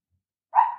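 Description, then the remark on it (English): A single sharp dog bark breaks the silence, moderately loud, its energy sitting in the midrange and trailing off briefly. “Yes, the dog is. I'm sorry about that. The dog will be the dog.”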